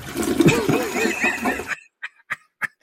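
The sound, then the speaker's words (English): A toilet flush rushes and swirls loudly for under two seconds, then cuts off into silence broken by three short, evenly spaced gurgling blips. “Flush. Goodbye. See you next year.”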